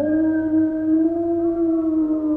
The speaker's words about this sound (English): I must have finally fallen asleep, because the next thing I knew, I was waking up to a frightening howl nearby.